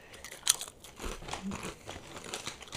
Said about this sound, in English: It don't even taste like nothing. Hold on. That's good. Y'all gonna hear me munching on this the whole episode.